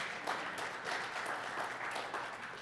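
A crowd applauds steadily, with dense, overlapping handclaps forming a continuous wash of sound at an even level throughout.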